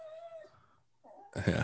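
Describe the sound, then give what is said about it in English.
A dog whines in a thin, high, creaky tone: one sustained whine, a short pause, then a second rising whimper, ending in a louder, rougher burst of noise. “No, I thought you had a creaky gate in the background.”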